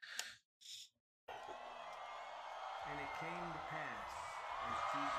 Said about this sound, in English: Listen to the crowd getting into it. They're already excited for …, huh?